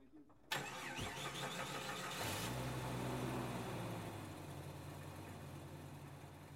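A car engine cranks and catches with a sudden burst, revs up loudly, then settles into a steady running hum that eases slightly as it pulls away from the surgery, carrying the dog Poppet in the back seat. No one speaks.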